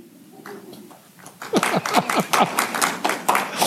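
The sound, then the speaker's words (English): A single person claps steadily, about ten sharp hand claps in an even rhythm after a quiet, murmuring start, with faint vocal sounds underneath. “You can clap if you want.”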